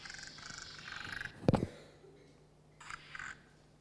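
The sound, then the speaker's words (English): A spotted marsh frog gives one sharp, knocking "tok" call, fairly loud. A hissy outdoor chorus of insects or other frogs continues in the background, and there is no talking. “I think Josh told me he's got spotted marsh frogs out there, but I've never come across. Looks a bit like a growling grass frog, but sounds a lot different.”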